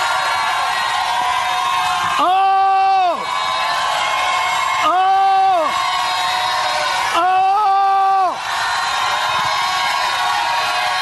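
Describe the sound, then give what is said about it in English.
An audience at an evening church service gives a 'lion shout', shouting loudly three times in unison, each sustained, ringing cry lasting about a second, with a steady roar of crowd noise and cheering filling the gaps between them. “I want to hear a lion shout here tonight.”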